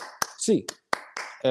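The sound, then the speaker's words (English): Eight sharp hand claps, counted one to eight in a UCLA Bruins fan chant, ring out in a quick, uneven rhythm, loud and crisp, with short bursts of voice between them and a held vocal note at the end. “So Bruins fans, hands up, eight clap time, baby.”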